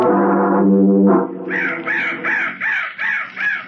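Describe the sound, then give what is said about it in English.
A crow caws about six times in a steady, rhythmic series of loud, harsh, raspy calls, following a brief low sustained tone at the start. “That crow was the bird of death.”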